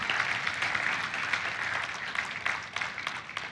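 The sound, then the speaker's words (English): Audience applause fills the whole stretch, a dense, steady wash of many hands clapping at once with no pauses and no voices over it. “Let's give a round of applause for all the stuff that God's doing.”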